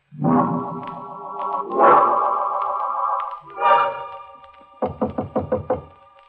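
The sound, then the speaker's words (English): Sustained, swelling orchestral chords give way to a quick series of about six loud, evenly spaced knocks on a door, sharp and ringing with a slightly musical tone. “He knocks on my door.”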